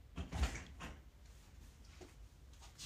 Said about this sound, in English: Did you open the door? Yeah. Who was it?